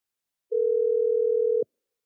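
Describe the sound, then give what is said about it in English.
A single steady electronic ringing tone sounds once, as when a phone call is being placed, lasting about a second and clear, with no voices around it. “But should I call this girl, though?”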